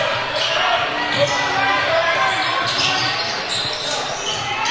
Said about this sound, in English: Gray working up top to his right. Over now to Hill. Hill dribbling against Cade Johnson.